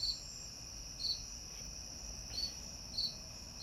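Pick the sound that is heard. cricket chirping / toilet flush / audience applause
cricket chirping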